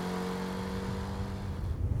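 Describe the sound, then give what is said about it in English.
A big car's engine hums with a steady low drone as it drives through the desert, swelling a little near the end like gentle revving, with no voices present. “I'm driving a big car through the desert, wearing a Zapata mustache and a trilby hat.”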